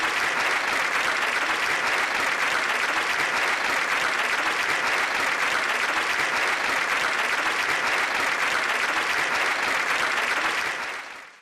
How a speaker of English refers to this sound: So an applause for you all from the Church of Guadalajara, Mexico.